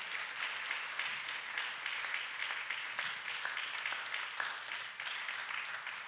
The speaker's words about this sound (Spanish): Gloria al Señor Jesucristo. Dele un aplauso, pero déselo fuerte.